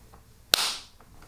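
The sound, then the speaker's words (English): A single sharp hand clap in a room with acoustic treatment (wall panels, hanging guitars, shelves, a rug and curtains in the corners) cracks out of near silence, its bright, crisp snap trailing off in a brief ringing decay of under half a second. “Here is an up-close clap and a far-away two-foot clap.”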